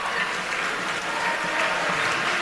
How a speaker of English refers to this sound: Making jokes now. The smattering of applause where people were really uncomfortable.